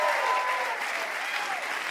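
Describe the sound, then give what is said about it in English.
An audience on the quiz show Ask Me Another breaks into sustained applause for a contestant, a dense wash of clapping that stays loud and steady throughout with no voices rising above it. “we would like to give you a Ask Me Another Rubik's Cube and a huge round of applause for being delightful.”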